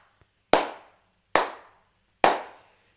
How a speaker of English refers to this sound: The slow clap of slow claps.